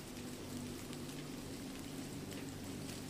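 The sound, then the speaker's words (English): Steady rain from a storm patters down in a continuous hiss, with scattered individual drops ticking through it and a low rumble underneath; fairly soft and even throughout, with no voices. “The rhythmic patter of the rain, the swooshing of the palms, and the distant sound of the surf and thunder come together to form a dreamy soundtrack.”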